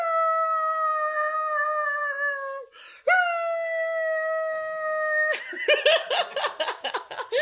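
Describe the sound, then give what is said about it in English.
A dog gives two long, steady, high-pitched howls, each lasting a couple of seconds with a brief pause between them, followed by bursts of laughter and giggling. “I'm going to see if I can make my dog bark.”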